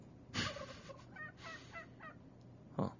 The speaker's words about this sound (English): Okay. What was that? It's kind of a weak turkey.